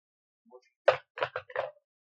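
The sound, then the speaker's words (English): A ten-sided die clatters across a tabletop in four quick knocks of uneven spacing, the first the loudest, then settles. A faint light rattle comes just before. No one speaks. “Alright, I need you to roll a D10.”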